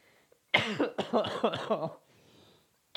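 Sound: coughing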